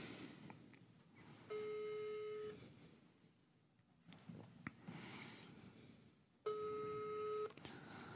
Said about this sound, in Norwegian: Inger Helene Nybråten, hun hadde ikke mulighet til å komme hit I dag, men vi skal ta oss og prøve oss å ringe opp av Inger Helene og høre om hun hjemme.